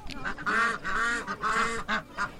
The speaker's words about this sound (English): The geese honked.